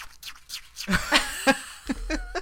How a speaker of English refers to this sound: But he hears me chewing on ice. Oh, I was just doing this.